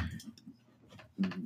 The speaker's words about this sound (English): And I'm sorry, I'm fiddling with this fucking keyboard because, oh my God, there's so many freaking wires and shit. I got to get, like, zip ties or bands or something.